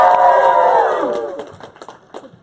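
audience cheering

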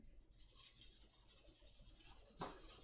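pencil writing on paper

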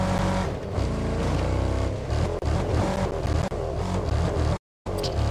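car engine driving up

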